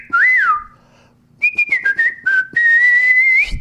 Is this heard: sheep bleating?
no